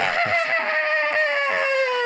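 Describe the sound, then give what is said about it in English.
An eerie, piercing screech, heard as a fire is lit in a cold furnace, wails steadily for about two seconds, echoing through the house, its strained, harmonic-rich tone sagging slowly downward in pitch, loud and alone without any voices. “You hear a screech as you light up the fire.”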